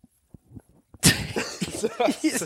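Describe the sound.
After a second of near silence with faint clicks, a sudden loud sneeze bursts out, and people immediately start talking over the tail of it.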